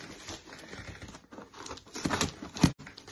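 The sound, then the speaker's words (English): Crinkling and ripping of a newly arrived parcel's packaging being torn open, a run of scratchy, uneven rustles with a couple of sharper, louder tears near the end, and no voices. “And another parcel has arrived. Have a look, do I need scissors? I think I do.”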